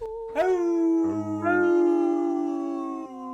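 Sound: wolf howl sound effect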